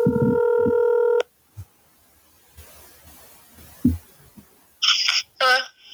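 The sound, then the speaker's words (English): A steady, buzzy phone tone holds for about a second, followed by a quiet stretch with faint low thumps, then two short, loud bursts of keypad dialing tones as a person calls a friend. “All right, I got another buddy we can call here. Hold on a second. This guy won't answer the phone.”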